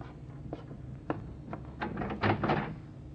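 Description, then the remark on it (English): A door is unlocked and opened: a series of sharp metallic clicks and knocks, then heavier rattling clunks as the latch gives and the door swings, with no voices. “Come on, open up, will you?”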